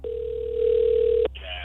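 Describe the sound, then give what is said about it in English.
A single ringback tone from an outgoing phone call, a steady electronic purr lasting just over a second and fairly loud, then cutting off as faint voices come in. “Please answer your for phone.”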